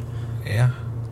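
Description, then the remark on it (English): A steady, low car engine rumble hums throughout at an even level while the car is being driven, with a brief, louder voice-like sound rising over it midway before fading back. “Maybe a little more than usual, but I don't think it's gonna make so much of a difference. Yeah, like the engine”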